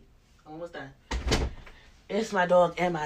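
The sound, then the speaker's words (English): A door is pushed partly open by a dog and a child in one brief, noisy half-second burst, with a person talking just before and after. “My dog going to crack open the door, y'all.”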